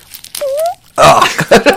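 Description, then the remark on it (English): Two pieces of styrofoam moved and rubbed together: a brief, thin rising squeak, a short pause, then a louder, longer raspy sputter with a fart-like, squeaky buzz. “So I have two pieces of styrofoam that I'm going to move together, like just get in real close to that and.”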